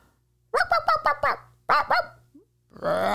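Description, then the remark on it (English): A person imitates a dog barking: a rapid run of five loud, sharp woofs, a short pause, then three more, followed by a burst of breathy noise. “It was a dog.”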